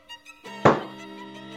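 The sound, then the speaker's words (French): A single heavy thump, a blow against a closed door by someone shut behind it, strikes once over a sustained, droning musical tone that keeps ringing afterward. “Et vous entendez, du coup, vous l'entendez un peu taper sur la porte, quoi.”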